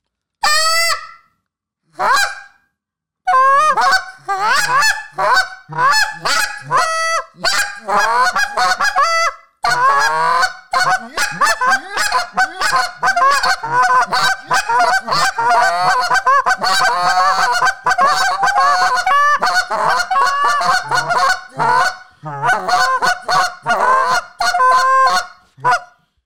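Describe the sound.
Loud goose honks blown on goose calls by two callers, one leading and the other filling in the gaps, starting with a few short toots, then a dense, rapid stream of overlapping clucks and honks that runs almost nonstop, with no talking.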